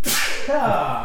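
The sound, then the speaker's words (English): One sudden, forceful sneeze: a sharp hissing burst that trails into a short voiced, nasal tail, fairly loud and heard on its own with no talking. “Bless you.”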